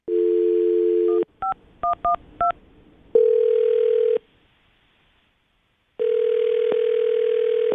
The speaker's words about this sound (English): Let's dial the phone number right now. Here we go.